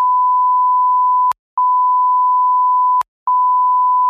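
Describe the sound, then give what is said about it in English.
A loud, steady, high-pitched censor bleep runs for about four seconds, cut twice by short silent gaps that start and stop with faint clicks. No voices are heard. “Like, I'll just beep this out so you won't hear it on the podcast,”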